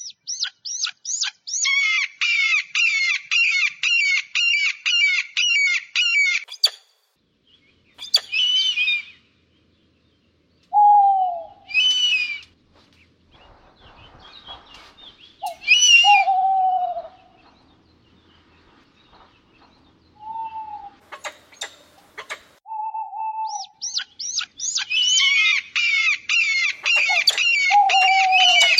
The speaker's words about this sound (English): Let's go now to the sounds of predatory birds.